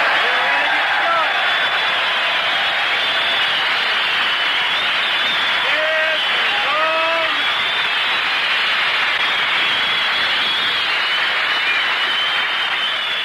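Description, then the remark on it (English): Loud, sustained applause from a show audience greeting Phil Harris's entrance, with cheering and a few whistles rising over the clapping, continuing steadily for the whole stretch. “All right, fellas, you can stand up and cheer.”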